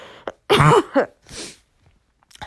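A short fit of harsh, raspy coughing: one loud, strained burst followed by two weaker, breathier coughs, with quiet pauses between and no talking.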